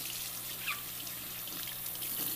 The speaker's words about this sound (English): I'm going to just put a little water in each of these bottles so I can, oh, actually, I have to leave, turn it back on for a second.